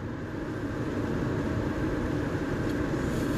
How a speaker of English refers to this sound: Like, bitch, I'm driving like a ton and a half of steel.